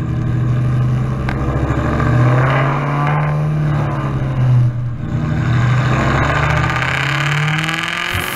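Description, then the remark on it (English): A stock Dodge Demon's V8 engine revs loudly and continuously, its deep, throaty rumble rising and falling in pitch through several throttle blips, with no voices. “I want to hear the audio of a stock he senses demon.”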